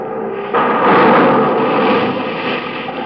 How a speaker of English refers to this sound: You know why that happened? You know why that man's store just blew up in his face?